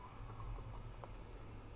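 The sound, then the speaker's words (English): Quick, irregular clicks of someone typing out a list of loot on a computer keyboard, steady, with a low hum underneath and no voices. “I'm just typing out the loot here.”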